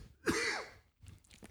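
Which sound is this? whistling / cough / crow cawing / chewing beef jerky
cough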